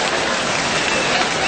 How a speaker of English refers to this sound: Clap your hands.